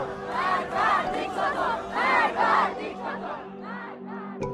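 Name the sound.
protest crowd chanting slogans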